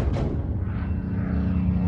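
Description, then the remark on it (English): The propeller engine of a Spitfire, an English fighter plane, drones steadily and loudly, a deep throbbing hum that holds constant throughout with no voices over it. “And then there's Spitfire, the name of the English fighter planes that won the Battle of Britain.”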